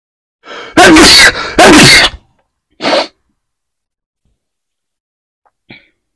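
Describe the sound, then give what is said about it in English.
A loud sneeze with a sharp intake of breath, two forceful bursts in quick succession, then a smaller sniff or follow-up exhale and a faint click before silence. “I'm so sorry, I just sneezed.”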